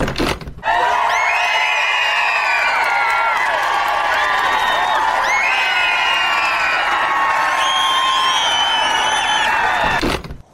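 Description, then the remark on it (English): A large crowd of fans cheers and screams excitedly, a dense wall of overlapping high-pitched shrieks and yells that stays loud and steady for about ten seconds before cutting off abruptly. “On the tarmac, a crowd of podcast fans is waiting expectantly.”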